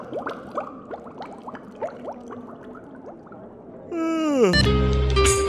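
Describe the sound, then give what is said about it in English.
A drink is poured into a glass, with quick bubbly gurgles rising in pitch for several seconds, then a louder sustained tonal ringing that bends sharply near the end. “If I could top myself off, that'd be fantastic.”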